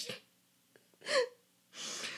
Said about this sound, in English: And let me sniff now. What was that?